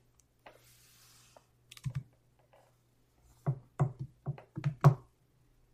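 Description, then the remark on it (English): Sharp computer mouse and keyboard clicks, a quick pair early on, then a rapid irregular cluster of about eight clicks, over a steady low electrical hum with no talking. “Sorry about the clicking if you're listening in on the audio version.”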